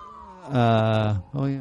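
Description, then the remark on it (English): An ambulance siren wails in two loud, harmonic-rich bursts: a long sustained tone that slides in pitch, a short break, then a briefer rising call. “Yeah, it's our nightly ambulance.”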